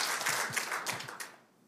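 An audience in a gym breaks into a short burst of applause for biblical covenant marriage. Many hands clap in a dense, crackling wash that swells briefly and then tapers off after about a second and a half.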